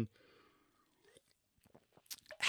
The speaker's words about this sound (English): So we don't worry about bottled water, except for my seltzer water, which I'm going to take a drink of.